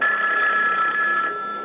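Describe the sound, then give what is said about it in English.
A telephone bell rings steadily and fairly loudly, a continuous metallic trill that eases off slightly near the end, with no voices over it. “She keeps calling the apartment.”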